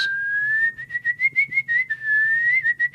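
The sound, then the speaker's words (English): A person whistles a canary-like call, whistling for canaries: a sustained high tone broken into quick warbling trills, clear, with no talking. “So, honey, is that the neighbor again whistling for canaries?”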